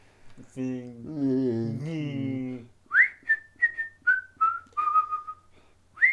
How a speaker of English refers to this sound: I think you should become a country and western singer with that whistle.